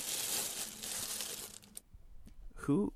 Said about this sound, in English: I was going to say, who's shuffling papers right now? Somebody's like, at like a newspaper editor's desk.